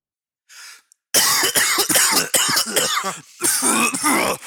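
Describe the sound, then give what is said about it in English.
A short inhale, then a loud fit of harsh coughing, several rough bursts in quick succession with brief gasping pauses, lasting a few seconds with no talking. “You know what I could use? A used cough drop.”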